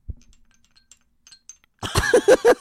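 Faint, scattered tinkles of small bells jingle softly, then a voice abruptly imitates the bells with a loud run of short, pitched, rhythmic vocal sounds.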